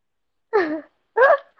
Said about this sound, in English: I'm blowing my nose.